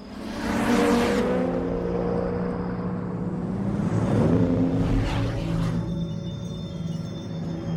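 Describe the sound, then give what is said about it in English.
A car drives at night in a film scene where Brian and Mia drive to find Dom and the family: a steady, low engine rumble and road hum, rising into whooshing surges around the first second and again midway, with no one speaking. “In this minute, Brian and Mia drive at night to find Dom and the rest of the family.”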